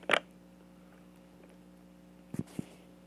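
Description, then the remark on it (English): A short, sharp sound at the start, then two quick gulping swallows of a sip of water close together about two seconds later, all over a steady low electrical hum with no talking. “That was more like a gulp.”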